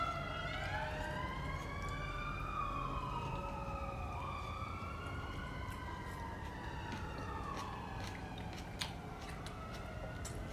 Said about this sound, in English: I hate those sirens so much. It's meant to keep you chaotic in the head. But they can't get me.